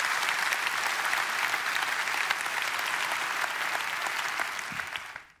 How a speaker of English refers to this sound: Yeah, we can clap over there, can't we?